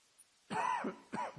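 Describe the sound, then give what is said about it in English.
Two harsh coughs, the first longer and rasping, the second shorter after a brief pause, with no talking. “Excuse me, but there's not much I can do about it. My cough, that is.”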